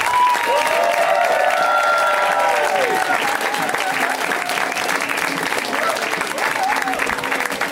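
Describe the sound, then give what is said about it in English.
A show audience bursts into steady, loud applause with excited cheers and whoops rising over the clapping, giving a warm welcome to a first-time guest, sustained for several seconds before easing slightly. “So you can get that started right now, which means clap your hands with your bodies.”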